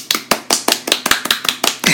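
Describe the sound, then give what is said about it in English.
A short run of light, polite golf claps, about ten crisp hand claps in a steady quick rhythm, with no talking over them. “Golf clap.”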